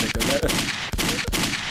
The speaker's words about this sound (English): Man, hit the gunshots. Man. Hit the gunshots.